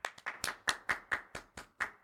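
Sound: hand claps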